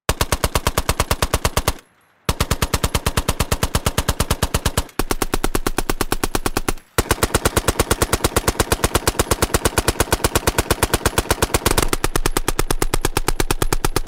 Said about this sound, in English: The Huns killed by these guns were more than likely mowed down by the Vickers machine gun.